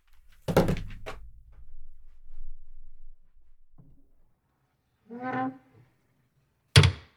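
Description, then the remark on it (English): A door thuds open with a low rumble, then a short creak follows before the door bangs shut again. The sounds are loud, with no talking. “Just go check the door”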